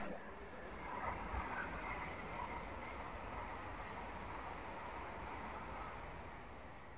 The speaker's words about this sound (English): Fucking hell, a lot of trains today.